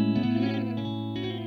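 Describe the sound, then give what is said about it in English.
A sustained, buzzy harmonic tone with a 78-millisecond slapback delay, heard in mono, so each attack is followed by a quick single echo. It is steady, with no voices. “you can hear now it's like an echo, like a slapback delay.”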